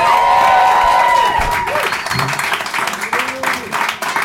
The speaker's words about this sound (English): Give a round of applause for the very hilarious Adam Posse.